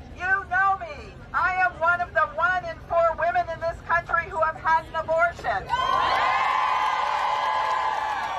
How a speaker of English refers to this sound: I mean, huge crowds of people cheering for I had an abortion.